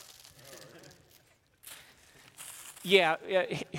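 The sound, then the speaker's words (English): A plastic bag of smoked salmon crinkles and rustles in short, uneven bursts as it is pulled open, with a brief pause midway; voices come in over the end. “So open those up.”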